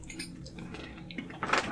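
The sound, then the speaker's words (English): Trickling water poured as live foley for a tabletop role-playing character, Kuzma, peeing in a corner: an irregular, splashy patter at moderate volume that swells into a louder, hissing stream near the end. No one speaks. “Love the live Foley work we're doing on this episode”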